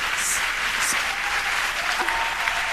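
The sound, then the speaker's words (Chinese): Steady, dense applause from an audience, a continuous wash of many hands clapping at a fairly even loudness throughout, with a few faint voices or whistles poking through. “更多我们回收到更多的掌声。”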